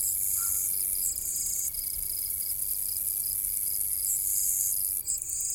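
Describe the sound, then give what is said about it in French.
A steady, high-pitched chorus of crickets and grasshoppers hidden in the grass, chirping and buzzing continuously, with thin pulsing trills layered over a faint low rumble, and no voices. “Les criquets et les sauterelles font un bruit de menuiserie minuscule, caché dans les herbages.”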